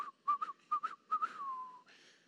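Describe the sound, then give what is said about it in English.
Someone whistles a short tune: several quick rising chirps in a bouncy rhythm, then a long tone that slowly slides downward and fades into a brief breathy hiss. “If I could whistle, I'd do that, like,”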